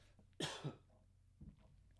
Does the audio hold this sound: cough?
yes